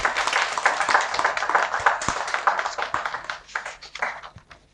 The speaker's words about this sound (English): To my wonderful two contestants, can I still have you back on stage, please? Let's give them a round of applause as they make their way up.